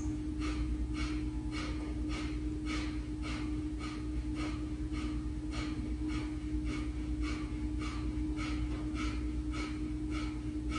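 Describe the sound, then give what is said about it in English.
Quick, forceful breaths of a round of 20 breaths in a breathing exercise repeat in a steady rhythm, roughly two per second, each a short rushing puff over a constant low hum and rumbling background drone. “On your next inhale, starting again, 20 total breaths.”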